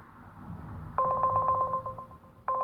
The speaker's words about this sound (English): Alright, so it's fucking ringing. You guys hear it ringing. Nobody's answering.